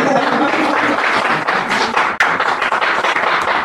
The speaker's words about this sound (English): You go ahead, clap.